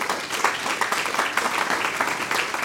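A crowd applauds a quiz contestant steadily, many hands clapping in a dense, even wash of sound that holds at a fairly strong level throughout, with no voices standing out.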